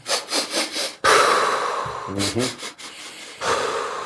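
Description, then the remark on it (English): A person demonstrates the sniff-and-poo breathing exercise: four quick rhythmic sniffs in through the nose, then a long forceful breathy exhale, a brief voiced puff, and another soft blowing breath. “So if I do a couple of things, I do my sniff and poo.”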